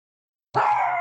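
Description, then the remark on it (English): After a moment of silence, dogs break into a sustained, high, wavering whine that rises into a howl, fairly loud and continuing to the end with no talking. “Sorry, the dogs are.”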